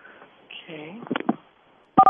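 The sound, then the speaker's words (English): A single short, loud telephone keypad tone sounds at the very end, pressing 2 for internet support in Soy Afnazar's phone menu after a brief stretch of speech and quiet. “For internet support, please press 2.”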